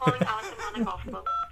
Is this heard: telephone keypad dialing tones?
yes